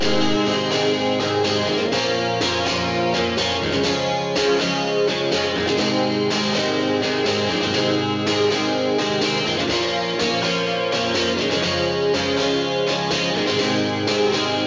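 A band plays a cover version of a song with steady, loud distorted electric guitars and drums driving a constant rhythm, the full mix dense and unbroken throughout with no voices standing out.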